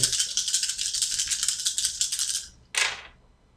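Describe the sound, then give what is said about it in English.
Five dice, rolled for a maneuver, rattle briskly for a couple of seconds in a dense, clicking shake, then a short sharp clatter as they tumble out and settle. No voices are heard. “And because I'm using my spear, I get plus one die to maneuver. So I get five, my full dice, because yep.”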